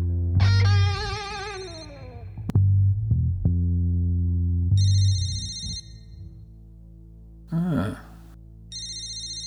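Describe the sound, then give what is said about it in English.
A mobile phone's FaceTime video-call ringtone chimes in bright, repeating electronic tones, fairly loud. A low hum and a brief swooshing burst sit between the rings, with no one speaking. “What I've got here is a call that's coming through on my mobile phone. And it's a FaceTime call from my subject, by the looks of it.”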